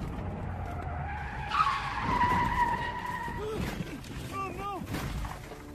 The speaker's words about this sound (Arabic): أبلغ عن الحادثة من قبل رجل كان يقود سيارته على الطريق الملتوية، شاهد سيارة تزيغ عن مسارها وتهوي إلى أسفل المنحدر.